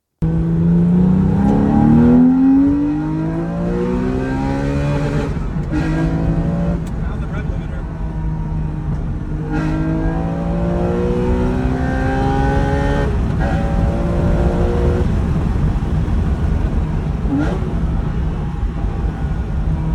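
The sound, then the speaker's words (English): A loud sports car engine revs hard and climbs through the gears, its harmonic roar rising and falling in repeated sweeps with brief gear-change breaks, continuous throughout. “What a fucking noise. Why can't modern cars sound like that?”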